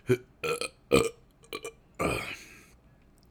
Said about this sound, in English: I got a burp. Hang on a second.